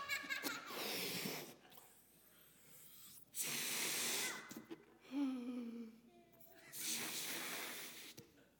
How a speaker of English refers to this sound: said he would rescue me if I pass out trying to blow this balloon up.